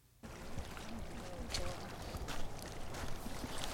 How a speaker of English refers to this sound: It's got a hydrophone in the water, picking up the rain and the sound of the water moving. Seems like kind of glass-ish.